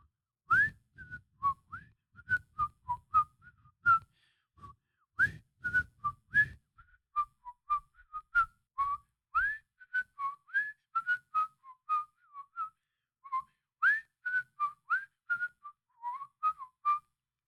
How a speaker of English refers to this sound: Anything you like, said the footman, and began whistling.